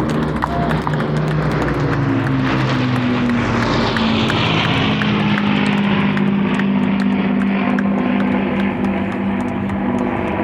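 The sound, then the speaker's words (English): Vintage WWII aircraft, a Lancaster Bomber, a Hurricane and a Spitfire, fly over a showground: a loud, continuous droning roar of piston engines with a deep throbbing hum that dips slightly in pitch as they pass, no voices. “The magnificent Lancaster Bomber, the Hurricane and the Spitfire.”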